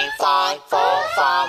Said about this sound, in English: Oh, jeepers, criminality! Alarm!